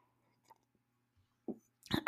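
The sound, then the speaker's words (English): Someone sips morning coffee in near silence: a soft gulp, then a short breathy slurp at the end, brighter and louder than the rest. No one speaks. “I just had to take a sip so you know I did.”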